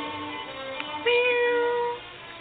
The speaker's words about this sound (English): Here, kitty, kitty, kitty.